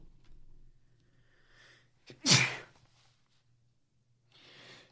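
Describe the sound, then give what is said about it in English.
A single sharp sneeze bursts out loud around the midpoint, framed by quiet breathy sounds and faint background hum before and after. “I got to sneeze.”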